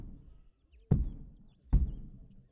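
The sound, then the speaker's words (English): Two heavy, booming stomps of an elephant land a little under a second apart, each a deep thud that rumbles and fades, heard in the distance, with no voices present. “Just as the perplexed looks were going through everyone's eyes, a loud stomping noise could be heard in the distance.”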